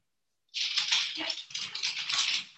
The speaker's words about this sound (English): That dog moving.